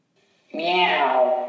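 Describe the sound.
A single drawn-out meow for the cat Shirley Cat, loud, rises suddenly after a brief quiet lead-in and holds steady to the end, a recorded human voice imitating a cat.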